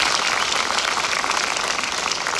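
An audience applauds steadily, many hands clapping together in a dense, continuous wash of sound that holds at an even, fairly loud level throughout.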